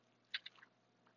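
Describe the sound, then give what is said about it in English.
A quiet sip from a drink: three or four quick wet mouth clicks and a soft swallow in a row, then near silence. “I'm gonna take a sip. Throat is feeling parched.”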